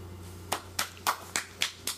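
A slow, quiet golf clap: six soft, evenly spaced hand claps about a quarter second apart, over a low steady hum with no talking.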